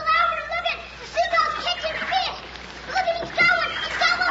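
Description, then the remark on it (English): Seagulls squawk in a rapid, overlapping chorus of harsh cries, fairly loud, over a steady splashing of sea water as the birds fight over fish. “They're fighting, the birds are fighting.”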